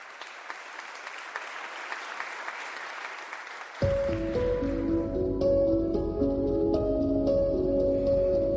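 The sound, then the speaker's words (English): Steady, bubbly trickle of water running over a riverbed just off the Little Miami River, moderately loud, for a few seconds before soft instrumental music swells in and continues over it. “Riverbed that comes just off the Little Miami River.”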